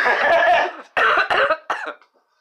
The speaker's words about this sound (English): Thank you for coughing right into the mic.